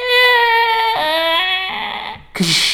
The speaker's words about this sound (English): I'm going to step on through. As you push the door gives that heavy creaking...